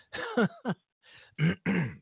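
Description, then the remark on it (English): A person on air clears their throat of something caught in it, several times in a row, a series of short, raspy bursts with brief pauses between them, and no speech. “I'm still clearing my throat.”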